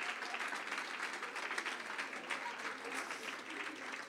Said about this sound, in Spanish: Denle un aplauso al Señor fuerte.